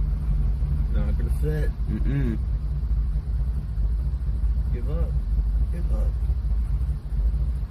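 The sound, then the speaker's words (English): A steady, loud low-pitched rumble of a Tesla car attempting to park itself with its auto park software, with brief muffled voices speaking over it now and then. “Here's an example of one that it's trying to do the auto park software.”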